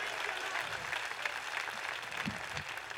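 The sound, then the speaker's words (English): An audience claps their hands in a dense, steady wash of applause, loud and continuous throughout, with faint voices mixed underneath. “Somebody better clap their hands and believe that.”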